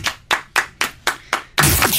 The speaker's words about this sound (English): Oh, clap. Clap, everyone.